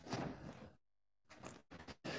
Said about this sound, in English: Now you can close this door, Jaini Thai.